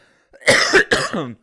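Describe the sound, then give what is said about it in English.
A short burst of harsh coughing: two or three rough, forceful coughs in quick succession, the last one trailing off into a throaty, voiced rasp, with no talking. “Anyway, yeah, I have to start the episode now while I'm in the middle of this freaking coughing fit.”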